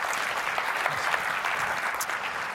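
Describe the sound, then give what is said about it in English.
An audience at the UX Australia conference applauds the event organizers in a steady, dense wash of many hands clapping, holding an even level throughout with no pauses and no voices on top. “So can we have a round of applause for the guys first?”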